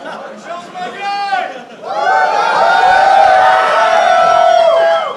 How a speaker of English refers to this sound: Wow. And I think Moltz is so funny, so I can't believe I got the cheer.